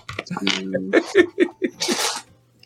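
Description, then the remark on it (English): A sneeze builds up through a few quick voiced gasps, then lets out a breathy, hissing burst at the end. It sounds moderately loud, with no talking around it. “Bless you, honey.”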